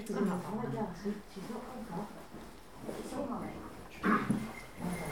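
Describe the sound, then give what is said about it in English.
A guide dog, tied to a chair, whimpers and whines in a series of high, wavering cries, with a louder yelp near the end and people's voices faintly heard. “My guide dog wants to join in.”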